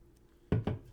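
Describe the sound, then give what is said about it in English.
Someone takes a drink: two quick, low gulping swallows in succession, fairly loud against an otherwise quiet background, with no talking. “I'm just going to take a drink first.”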